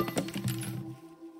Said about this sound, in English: As she set it against the wall, the nail fell out, pinging against the floor. She attempted again, placing the nail back in the wall and hanging the letter, but they both fell, clattering to the floor.